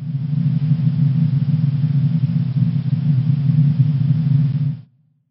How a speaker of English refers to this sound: Is that an airplane sound inside of an airplane? It's white noise. This one's kind of unfair because it's a sound that doesn't actually exist in nature.